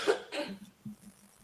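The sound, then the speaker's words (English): Two quick, harsh coughs in close succession, fairly loud, followed by a few faint, low throaty sounds as the coughing fades. The cough comes from the chest and lungs, not the throat. “Well, they're giving me ideas on how to help with the cough in the chat.”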